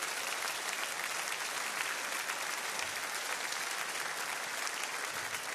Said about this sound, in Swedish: Han åker in konstant i Ukraina. Ge honom en riktig applåd.